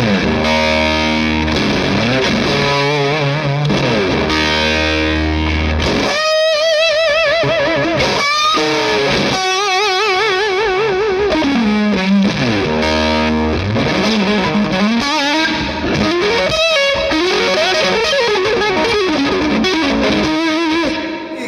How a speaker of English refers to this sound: I mean, the big thing for a fuzz for me is obviously I like the germanium.